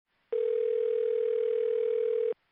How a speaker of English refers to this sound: and he is very excited to tell his father, and just about that time the phone rings.